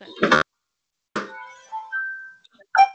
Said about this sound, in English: Okay. Okay. Somebody's alarm was going off.